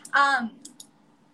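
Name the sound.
typing on a keyboard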